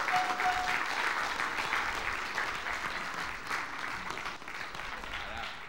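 A sustained round of applause from a crowd in a local church, for a newly commissioned pastor receiving certification of credentials: steady dense clapping that holds at an even loud level for several seconds with no voices rising above it.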